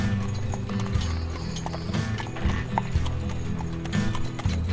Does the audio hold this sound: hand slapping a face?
no